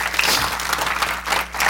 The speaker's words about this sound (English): Would you give the Lord a hand clap of praise this morning?